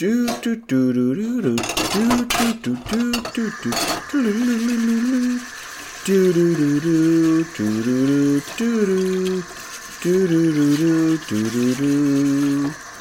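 Water runs steadily from a tap while dishes clink and clatter, busiest at the start, with someone humming a melody over the washing throughout.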